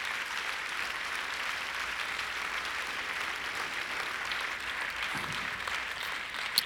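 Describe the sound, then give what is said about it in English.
An audience claps together after a prayer, giving God a hand clap, in a steady, dense wash of applause that holds at an even loudness throughout, with one sharper clap standing out near the end. No one speaks. “All over this place, let's give God just an awesome hand clap.”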